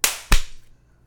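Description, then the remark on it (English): Two sharp hand claps on a count of three, in quick succession, the second fuller and heavier than the first, each cracking loudly and fading quickly, with no voices. “1, 2, 3, clap.”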